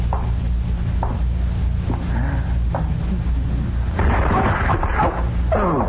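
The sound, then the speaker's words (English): A steady low rumble with a few faint knocks, then a heavy crash and scattered clatter as a flower pot falls from atop a pedestal and knocks over a man crossing a stage, the noise breaking up over the last two seconds. “That flower pot was on top of that pedestal.”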